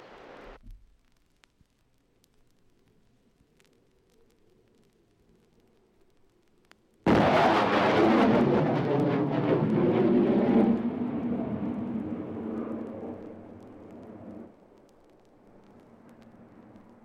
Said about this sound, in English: I'm now stabilized at well over 800 miles per hour at Mach 1.2. The supersonic boom should hit you in just a few seconds.